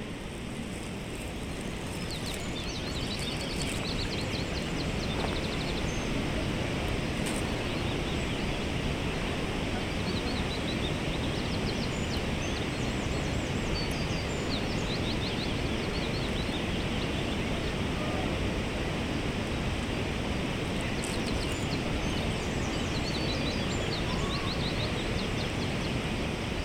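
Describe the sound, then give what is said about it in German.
Steady, dense rush of a waterfall whose water, right after impact, becomes a stream that quickly calms and flows babbling into a lake, blending into a bubbling, splashing flow, continuous, with faint bird chirps high above the roar. “Unmittelbar nach dem Aufschlag geht es in einen Bach über, kommt dann schnell zur Ruhe und fließt plätschernd in den See, den du gerade hinter dir gelassen hast.”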